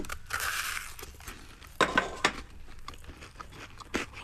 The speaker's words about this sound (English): Oh, there's a crunch. Crunch to the Biscoff. Lovely chocolate. I'm tasting the rum.